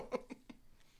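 Soft, close-up chewing of bread: a few quick, moist mouth bursts in a steady rhythm that fade over about a second, with no talking.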